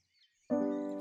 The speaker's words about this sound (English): We have starlings under the eaves.